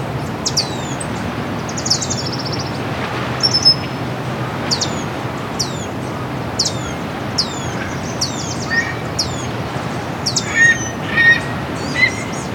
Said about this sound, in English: Baltimore Oriole here somewhere. There it is again.